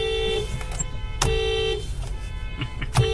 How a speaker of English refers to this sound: That's a lot of horns right now. Did not expect a horn section. I bet you the person who also honked, the other person who have honked, was also not from Sydney.